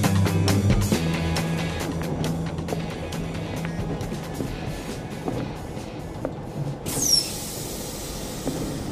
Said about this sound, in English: Der Zug fährt in 3 Minuten. The train is leaving in 3 minutes. Thanks a lot. Von Gleis 5. Platform 5.